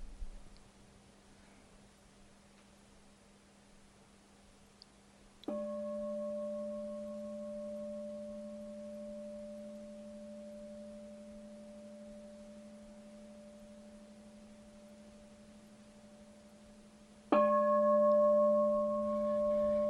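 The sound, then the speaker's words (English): A bell is struck twice, about twelve seconds apart, each strike ringing out with a clear, steady tone that hums on and fades only slowly. Nobody speaks. “Not leaning into what's next or what's just finished, but really being present to the ringing and sound of the bell.”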